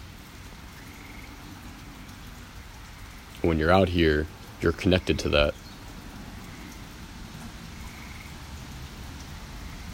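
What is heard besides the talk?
rain falling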